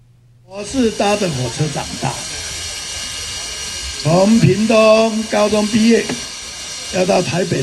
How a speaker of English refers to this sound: The sound of the whistle, the sound of puffing steam, and the smell of burning coal make up the feelings of homesickness.